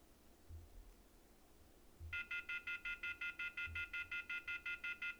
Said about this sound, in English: Yeah, you're going to be hearing a lot of dial tone because I am playing that game.